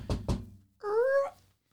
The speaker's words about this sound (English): Okay, do the knock on the door and I'll answer the door.